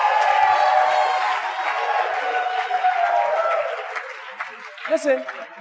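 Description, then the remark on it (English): A church audience claps and cheers for Jesus during a sermon, a dense, steady wash of applause mixed with raised voices that holds strong for about four seconds, then thins and fades out. “Clap for Jesus.”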